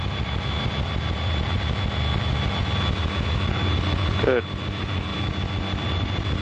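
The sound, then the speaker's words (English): A small airplane engine drones steadily throughout as the plane turns upwind in busy traffic, crabbing slightly into the wind, a dense low rumble with a faint high whine, while a single voice briefly speaks over it. “Okay, now I'm turning upwind, and I don't need to turn quite as much this time.”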